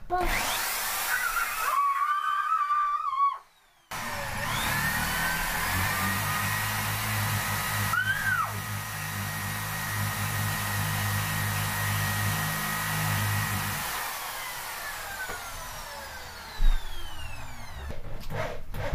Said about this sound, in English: Time to drill the hole.